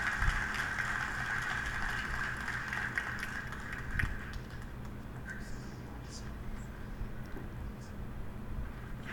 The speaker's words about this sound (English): They're putting the chairs down.